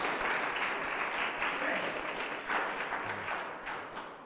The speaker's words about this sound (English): Go on, give him another round of applause.